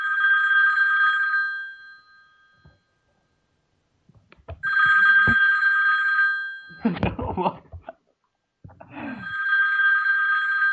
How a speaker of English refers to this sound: Is it ringing? It's ringing. I hope he answers soon.